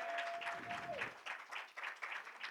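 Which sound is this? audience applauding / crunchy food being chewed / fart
audience applauding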